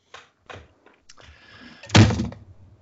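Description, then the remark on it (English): A few light taps and a brief scraping rustle, then a computer mouse is dropped onto a surface with one loud thud that fades quickly. “All I heard was a loud thud. I was like, that could be anything. I just dropped my mouse.”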